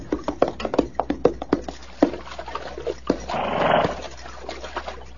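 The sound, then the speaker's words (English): Thirsty horses slurp and gulp warm water, a quick run of wet sucking clicks followed by a longer, splashy swallow, with no voices. “Water's warm, but at least it's wet. It's good. Yeah, let the horses at it.”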